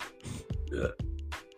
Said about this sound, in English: Ew. Oh, these burps are disgusting.